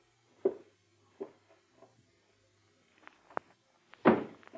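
Muffled footsteps of a man taking a drink straight to the bedroom thud overhead, about six soft, unevenly spaced steps, faint and dull as if heard through a ceiling, with the last footfall landing noticeably heavier.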